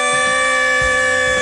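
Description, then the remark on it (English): A quiz timer buzzer sounds off as time runs out on a quiz question, in one loud, steady electronic blare, holding a single harsh, buzzy pitch for about a second and a half with no talking over it. “I wish I had more breath in me, but that's when the timer ran out for that.”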